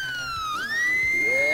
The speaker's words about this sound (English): Oh, it doesn't matter. The alarm goes off.